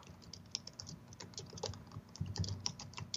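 Rapid, irregular clicking of keys on a computer keyboard, close and fairly quiet, a steady run of taps with no voices over it.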